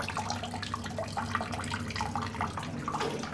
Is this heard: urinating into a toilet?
yes